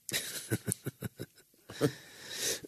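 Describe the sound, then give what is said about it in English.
A fit of coughing: a quick string of short, harsh coughs, followed by a couple of heavier, rougher hacks and a raspy, breathy finish. No one speaks. “I'm really sorry about the coughing, guys.”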